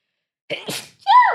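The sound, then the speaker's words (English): A single loud sneeze: a quick sharp intake of breath, a noisy explosive burst, then a short voiced trailing sound as it ends. “God bless you.”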